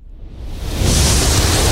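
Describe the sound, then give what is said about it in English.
Fire burning with a dense, rushing roar that swells over the first second, then holds steady and loud. A grainy, hissing texture runs throughout, with no voices. The flames are still burning after being started by striking a match, in a prison. “Crackling fire of flames, still burning after that.”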